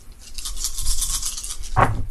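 Dice being rolled for a contacts roll rattle and clatter steadily for about two seconds, a bright, dense scraping-clicking noise, with a brief louder tumble near the end.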